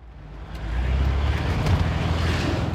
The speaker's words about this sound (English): We're in a 1989 VW Vanagon, Westphalia edition.